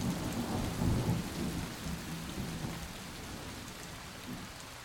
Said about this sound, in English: How long before they reach the coast and spill out into the cold North Sea? How long before the water that's just run beneath your feet returns as rain to Roundhay Park again?